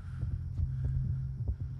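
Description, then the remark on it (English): Overlapping heartbeats throb together in a dense, low pulsing rhythm, with soft thuds arriving every quarter second or so over a constant deep hum. No voices are present. “Do you hear that? Heartbeats. A lot of them.”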